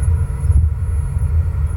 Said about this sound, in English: All right, I'm seeing the car right now. About to start it, it's rumbling.